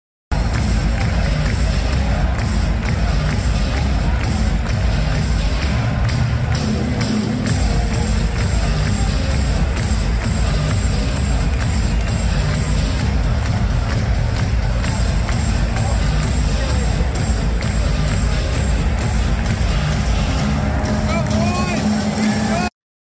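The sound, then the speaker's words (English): A huge stadium crowd roars continuously at a football game, a dense, loud wall of cheering and chanting with no break, rising in swells across the whole stretch. “I knew that the crowd was great, but it wasn't until I saw this video from our guy Res Devil that showed me just how electric the atmosphere was there.”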